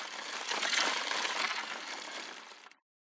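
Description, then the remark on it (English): A steady, buzzy whir of a spinning toy truck wheel, fairly loud and unbroken for almost three seconds before cutting off abruptly. No voices. “The scoop from a toy digger and the whirring sound is the wheel of a toy truck.”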